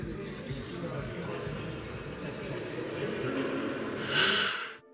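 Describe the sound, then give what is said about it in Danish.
A rough snore from a person asleep in bed rattles on steadily for several seconds, low and throaty, then ends in a sharper, breathy snort before cutting off. “Hvorfor snorker du? Jeg sover. Du snorker? Nej, jeg trækker bare vejret tungt.”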